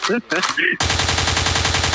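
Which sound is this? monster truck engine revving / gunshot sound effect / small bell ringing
gunshot sound effect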